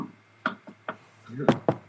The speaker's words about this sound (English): No, I just knocked on the wood in my room.